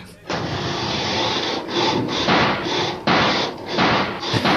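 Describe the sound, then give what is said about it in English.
A stuck garage door grinds and rattles loudly as someone tries to open it, a continuous harsh scraping with a few brief dips as it strains and jolts, and no voices. “The garage door's a bit stuck. Let's try again.”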